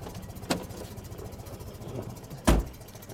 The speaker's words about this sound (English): And then down here under the dash is actually this little pull tab, and I can use that to manually speed up the idle. It's like poor man's cruise control right there. There you go. Let's go see what the engine looks like now that it's purring along.